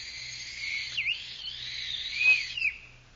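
A thin, shrill, battered old tin whistle blown in one long continuous note that wavers and dips in pitch, with a brief swoop near the start and a sharper burst toward the end, heard alone.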